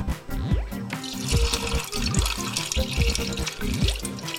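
Water sloshes and swishes in a container as beans are rinsed, then pours out in a steady splashing stream, fairly loud, with a few clunks against a sink and no talking.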